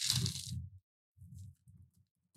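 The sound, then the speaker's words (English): Glass pieces from a charity shop tumble onto the floor in a bright, crunching, tinkling burst, followed by a few softer, duller clattering bursts as more fragments land. No voices. “There's my diamonds on the forest floor.”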